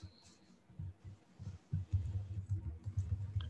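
Soft, rapid clicking and tapping in a quick, uneven rhythm, like fingers typing on a computer keyboard, fairly quiet, with a faint hum underneath and no speech.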